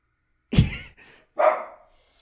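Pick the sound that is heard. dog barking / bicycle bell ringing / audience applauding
dog barking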